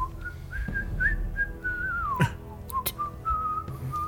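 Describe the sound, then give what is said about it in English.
Someone whistles a wandering tune in steady, sustained notes that rise and dip in pitch, with a couple of brief knocks partway through and no talking. “And he walks right by, whistling.”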